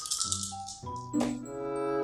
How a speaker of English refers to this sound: Some very enthusiastic dice rolling.